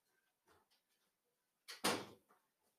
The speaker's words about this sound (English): I'm going to close the door. Oh, I don't think I closed it properly.